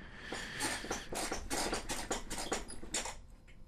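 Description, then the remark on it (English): A chair squeaks and creaks repeatedly in a steady rhythm, about eight or nine shrill, scratchy squeals at roughly half-second intervals, fairly loud and with no talking over them. “Geez, this chair is really squeaky.”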